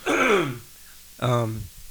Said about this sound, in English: See, in a professional podcast, they would edit that out. Yeah, we don't have a cough switch.